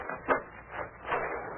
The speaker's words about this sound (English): All right, open that door and we'll see what this barn has to offer.